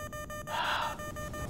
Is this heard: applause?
no